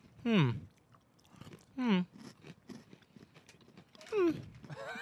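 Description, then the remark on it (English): Crisp crunching and chewing from more than one person eating crunchy s'mores snacks of marshmallows and graham pieces, with steady snaps and crackles throughout, broken by three short, rising voiced murmurs of appreciation. “I'm not a big fan of marshmallow. But this has a crunch that I really enjoy.”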